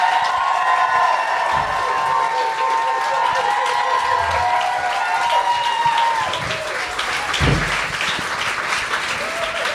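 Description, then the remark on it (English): A studio audience bursts into steady, dense applause with cheering and scattered whoops for guest Megan Trapp (BodyPosiPanda), a loud sustained wash of clapping lasting the whole stretch. “Please give her a big round of applause for Megan Trapp.”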